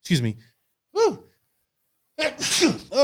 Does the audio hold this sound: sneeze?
yes